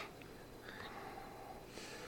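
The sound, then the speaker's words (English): Quiet sniffing of a glass of whiskey: a few short, breathy nasal inhales with no talking. “I smell the proof on it.”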